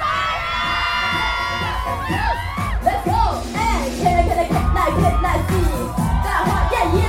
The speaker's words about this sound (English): Let me hear you scream!